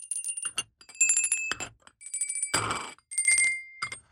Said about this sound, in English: You know, it's especially beautiful with the sounds of the bells just landing back on the counter.